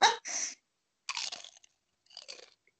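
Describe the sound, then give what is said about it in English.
Crunchy chewing while eating guacamole: a few bursts of crisp, crackling bites separated by short pauses, fairly loud and with no talking over them. “I'm eating.”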